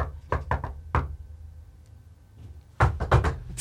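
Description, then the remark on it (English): Knuckles rap on a door in a rhythmic pattern: a quick run of sharp knocks, a pause, then another lively burst of knocks, with no voices. “Can you knock harder? No wonder no one answers the door for you.”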